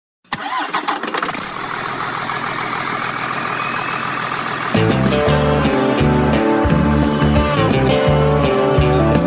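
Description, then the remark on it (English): A big old truck engine cranks and roars to life, then settles into a loud, steady running rumble; a deeper rhythmic throb joins in partway through, with no talking. “Let's go for a ride in this big old truck.”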